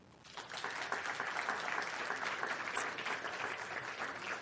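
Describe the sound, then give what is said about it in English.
A large audience of educators claps steadily in an auditorium, a dense, sustained wash of applause that swells in quickly and holds at a fairly loud level throughout, with no voices standing out, voting by applause that fall is their favorite season. “By applause, let me hear you if your favorite season is fall.”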